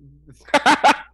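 A dog lets out three quick, loud barks in close succession, preceded by a soft low whine, with no one talking over it.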